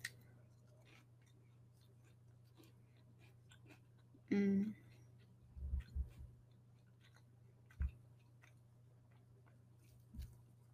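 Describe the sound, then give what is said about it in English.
Crunching of a crisp waffle bowl with ice cream being eaten, a handful of short, sharp bites and chews spread out over several seconds against a faint steady hum. “It's like perfectly crunchy.”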